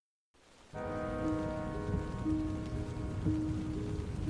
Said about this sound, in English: Rain drizzled over the canyon of the South Fork of the Ogden River. It pattered on the canvas top of Heidi Posnien's Jeep as she drove up Utah State Highway 39 on the morning of Friday, June 4th, 1971.